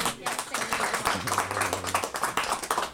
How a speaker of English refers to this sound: All right, well, round of applause.